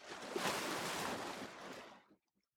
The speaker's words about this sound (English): Are there waves rolling softly against the shore? How does this sound make you feel?